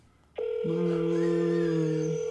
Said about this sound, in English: Guys, I don't think they're going to answer. No, they ain't answering. It's ringing too much. Yeah, I'm going to let it ring one more time.